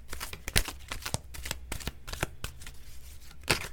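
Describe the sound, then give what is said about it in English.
A deck of oracle cards being shuffled, with a steady run of quick papery riffles and taps, a couple of sharper snaps standing out, and no voices. “So as I shuffle, I'm just going to keep that in mind.”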